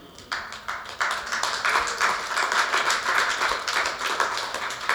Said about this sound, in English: Just keep clapping your hands. Come on.